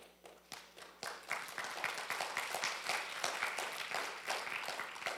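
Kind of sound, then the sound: crowd, audience applauding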